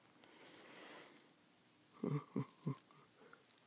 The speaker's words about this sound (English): I really gotta stop recording in the mornings because I yawn so fucking much.